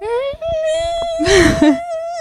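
A fire whistle siren sounds outdoors for a fire call, holding a steady, high wailing tone throughout, while a person's voice briefly rises and slides along with it, imitating the siren's pitch.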